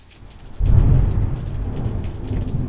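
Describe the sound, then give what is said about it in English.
A September storm: steady rain hisses while a deep roll of thunder surges in abruptly and rumbles on, heavy and low, with no voices. “After the heat of August had passed, the following week drew in September storms to drum the cumulus sky. Amid lightnings and great volumes of tumbling air, for 4 days the air in the loft shook.”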